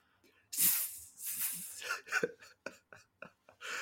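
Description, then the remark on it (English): A voice imitates the snake jazz from Rick and Morty with rhythmic hissing: a long opening hiss, then a string of short, syncopated hisses and clicks, moderately loud, with no other sounds. “Play that snake jazz.”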